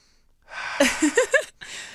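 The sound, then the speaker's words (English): A slow, drawn-out sniff through the nose from a small essential-oil-based nasal inhaler tube, flowing into a few short breathy vocal exclamations, then another soft breath of air. “You guys, if you're listening and you're not watching the video right now, he's literally just sticking this little tube in his nose, sniffing it, and then making some sound effects after.”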